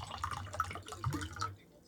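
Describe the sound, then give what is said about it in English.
Water is poured into a glass, a steady gurgling splash with a faint rising ring that runs for about a second and a half before stopping. No one speaks. “Who wants some water? Glug, glug, glug, glug.”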